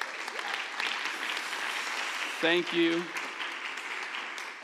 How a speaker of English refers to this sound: If you could give them a round of applause.